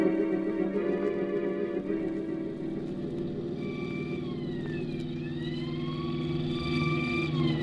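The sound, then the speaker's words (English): A car engine drones loudly at about 70 with the accelerator floored throughout. About halfway in, a police siren joins, wailing up and down as it chases behind. No one speaks. “Hey, is 70 the best you can get out of this car? I got my foot down to the floor now.”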